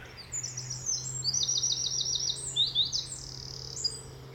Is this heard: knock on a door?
no